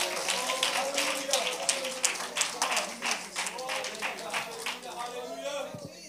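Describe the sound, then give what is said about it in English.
A crowd claps steadily for several seconds when told to clap their hands if they receive the blessing, a dense wash of many hands with rhythmic bursts, while voices call out over the applause before it thins near the end. “If you receive that blessing, clap your hands.”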